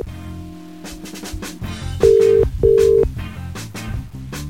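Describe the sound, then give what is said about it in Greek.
Two long, steady ringback tones sound clearly over background music, each lasting about half a second with a short gap between them, loud, as a phone call to someone is placed. “Τον πάρω τηλέφωνο, κάτσε τον πάρω τηλέφωνο.”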